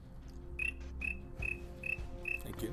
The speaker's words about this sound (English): There's the crickets.